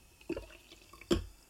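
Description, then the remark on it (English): The rest of a bottle of tonic is poured into a drink in a glass, heard as two short, splashy liquid glugs about a second apart, fairly quiet, with no one talking. “So just pour the whole thing in.”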